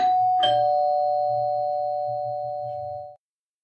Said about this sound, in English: though his thoughts were broken up when the doorbell rang.